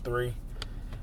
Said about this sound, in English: This is just me driving in the car right now.